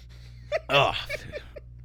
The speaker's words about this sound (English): Excuse me, I'm burping and I'm still burping.